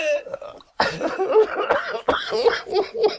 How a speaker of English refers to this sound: People don't cough or burp or fart on the radio, but they do in real life. Of course, let's have a cough now. You ready? Let's both.